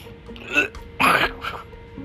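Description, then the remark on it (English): A breathy vocal sound, like the end of a yawn, breaks into a sharp, harsh cough and a short choking gasp, then trails off into quieter throaty breaths. “I went from a yawn to a cough to a choke.”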